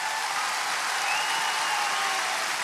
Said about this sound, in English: You can clap, yeah.